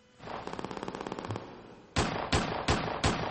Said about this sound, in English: the first 10 seconds of this song is going to summarize everything about this song. A bunch of gunshots